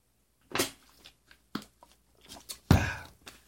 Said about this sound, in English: since thirst is on my mind, another sip of water won't hurt my time.